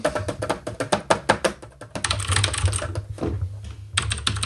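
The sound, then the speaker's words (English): Rapid typing on a computer keyboard, a steady run of crisp key clicks that briefly blur into a denser clatter before the distinct taps return. No one speaks. “Did you hear that? I have an unimpressive keyboard right now because we're podcasting.”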